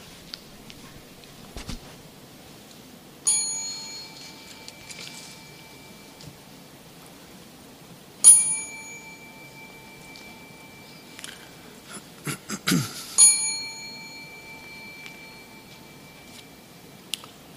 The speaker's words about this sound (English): Dear yogis, please bow. Let us bow together three times following the ring of the bell and chant Namo Tassa three times.